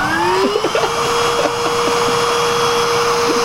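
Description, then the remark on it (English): A chainsaw runs steadily and loud, its motor holding one sustained, buzzing whine with a slight rise in pitch at the start, unbroken for the full few seconds. “Not if I kill you with this chainsaw.”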